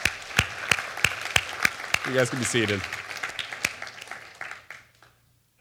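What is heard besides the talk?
audience round of applause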